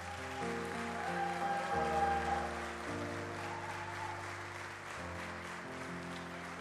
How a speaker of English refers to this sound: As you all know, I don't need the applause, but I appreciate it.